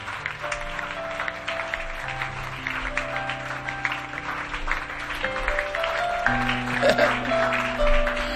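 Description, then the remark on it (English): A crowd claps steadily throughout, a dense wash of hand claps mixed with sustained musical tones, swelling slightly louder toward the end. “Are you clapping or you are not clapping?”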